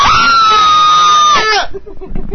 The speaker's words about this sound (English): We're supposed to do a whole load of screams, aren't we? You're right. Okay, people, take your microphones, like, off your ear, further away from your mouth, and just start screaming.